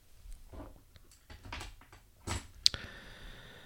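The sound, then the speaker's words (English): Pencils are shuffled and slid out of the way across a desk, making a series of light clicks and scrapes, then one sharper clack that leaves a brief ringing tail. No one speaks. “I'm just going to move my pencils out of the way.”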